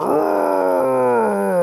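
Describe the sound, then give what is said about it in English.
A loud, buzzy farting sound effect coming from a human automaton during a field test, one sustained blast of about a second and a half with a slowly sagging pitch, heard alone with no talking. “I think your automaton just ripped a fresh one.”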